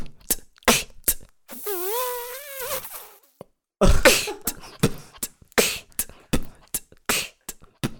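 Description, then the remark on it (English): A person imitates a mosquito with a thin, wavering nasal whine lasting about a second, followed by a burst of clicks, breathy pops and mouth noises, fairly loud. “What about a mosquito?”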